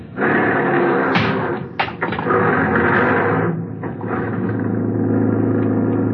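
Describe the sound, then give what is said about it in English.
A hailed taxi's engine rumbles loudly, with a couple of sharp clunks early on, then settles into a steady drone as the cab pulls away. No one speaks. “Outside, I hailed a taxi.”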